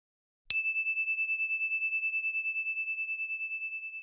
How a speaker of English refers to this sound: Here comes the story bell.